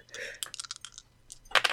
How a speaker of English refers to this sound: 2 dice on a naughty roll.